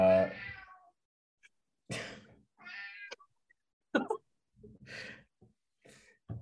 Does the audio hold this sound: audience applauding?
no